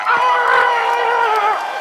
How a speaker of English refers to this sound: Oh, Louse, cue the applause again.